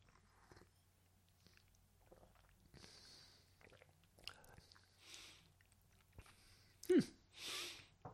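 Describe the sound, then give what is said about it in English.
Someone sips a ginger-spiced liqueur: quiet wet mouth noises, small slurps and swallows, with a louder slurp and a breathy exhale near the end over a faint low hum. “We're going to sip it and taste it properly.”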